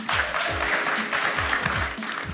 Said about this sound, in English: So just a round of applause for them making the time.